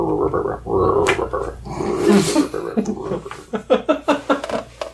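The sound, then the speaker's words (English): A voice imitates the snoring of a character asleep in a chair, leaning back: long, low, rumbling snorts at first, then a run of shorter rhythmic puffs and grunts, moderately loud with no other talk. “Asleep in a chair, just leaning back a little bit. Snoring softly.”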